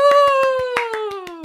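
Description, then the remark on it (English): Steady, evenly spaced hand claps, about ten sharp claps in quick rhythm, sound over a sustained tonal hum that slowly slides downward in pitch. There is no talking. “Please put your hands together for the incredible”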